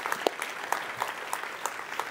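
A crowd claps steadily, a dense patter of many hands with a few sharper claps standing out every so often, moderately loud with no talking.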